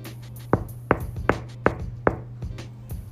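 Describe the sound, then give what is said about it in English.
Five firm, distinct knocks on a door in a steady, evenly spaced rhythm, with a low steady hum underneath and no voices. “But let's just say one day you hear a knock on your door.”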